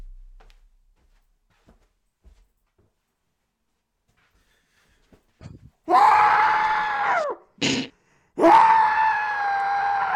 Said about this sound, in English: I just screamed into a pillow.